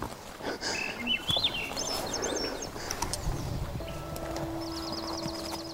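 Several birds sing and chirp in quick, warbling trills in the wooded outskirts of a Yukon subdivision near Whitehorse, over a rustling outdoor background, with occasional soft clopping sounds; the calls are fairly clear.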